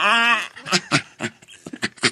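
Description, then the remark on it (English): A dog lets out a short, high whine, then pants in quick, breathy bursts, with no one talking. “I've learned that your dog makes weird noises.”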